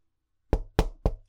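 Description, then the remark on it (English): Three firm knocks on a door in a steady, evenly spaced rhythm, fairly loud, with a fourth just beginning as the sound cuts off; no voices. “Opportunity is knocking.”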